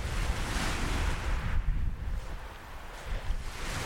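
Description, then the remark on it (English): Waves wash onto a beach at Kemlyn Bay on the Welsh coast, a curved bay divided by a causeway into two beaches, in a broad, hissing surge that swells and recedes, with wind buffeting the microphone and no voices or people, in an open, exposed outdoor setting. “This is Kemlyn Bay. It's sort of divided into two, really, I suppose, by the causeway. Two beaches. Not a soul here. You can hear the water.”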